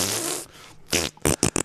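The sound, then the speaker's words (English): A mouth-made fart noise: a long buzzing raspberry followed by a quick series of three or four short, sputtering bursts, loud, with no talking over it. “insert fart noise, dude.”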